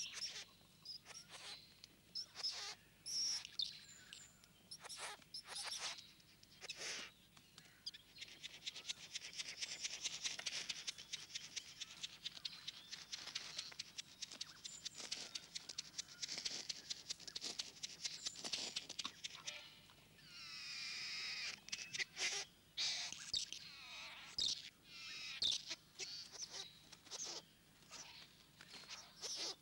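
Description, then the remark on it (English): A male bowerbird calls at his bower, built and decorated with shells to lure a female, chanting and dancing as if at a ritual: a loud, continuous stream of harsh rasping, buzzing and clicking notes with brief pauses, like churring chatter, and no voices present. “The bird also chants and dances as if at a ritual.”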